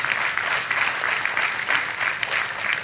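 A crowd claps steadily, a dense patter of many hands sustained at an even level throughout, with no voices standing out above it.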